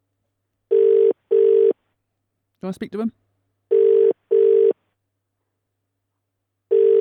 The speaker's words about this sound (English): Yeah, we're ringing him.